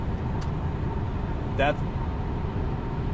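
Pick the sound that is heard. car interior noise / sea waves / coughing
car interior noise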